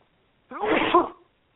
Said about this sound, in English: Hang on, I got to sneeze.